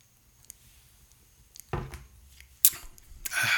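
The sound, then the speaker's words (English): A quiet stretch gives way to someone sipping Pedishaw, a sour wheat ale from Holy City Brewing Company: a soft slurp, a sharp glassy tap, then a breathy rush of air as the drink goes down. No one speaks. “And I'm going to take a sip right now.”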